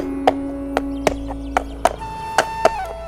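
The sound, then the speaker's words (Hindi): Horse hooves clip-clop in a steady, evenly spaced rhythm, about eight sharp, crisp knocks over a few seconds, as King Krishnadevaraya rides his horse with Tenaliram and other ministers, with a faint tonal hum in the background and no talking. “अगले ही दिन राजा कृष्णदेव राय अपने घोड़े पर बैठकर तेनालीराम और कुछ अन्य मंत्रियों के साथ उस कलाकार से मिलने चल पड़े।”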